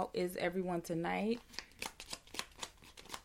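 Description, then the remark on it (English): A voice is heard briefly, then tarot cards are shuffled for a reading in a quick run of crisp, papery snaps and riffles, about eight distinct flicks in an uneven rhythm. “And if you are on the podcast and you hear some shuffling, obviously, because I'm doing readings.”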